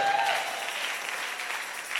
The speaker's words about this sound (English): Can you clap a little?